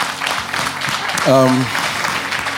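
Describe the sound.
An audience claps steadily to help bless a woman, a dense crackling wash of hands, while a single voice briefly calls out over the applause midway through.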